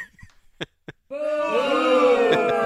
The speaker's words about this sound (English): That effort got booed.